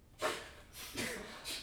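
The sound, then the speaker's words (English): A man coughs three times in quick, uneven bursts, each a short harsh rasp, moderately loud, with no talking in between. “Yeah, he keeps on coughing.”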